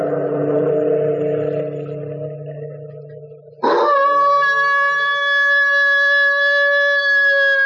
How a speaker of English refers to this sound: It's only our neighbor's dog baying at the moon.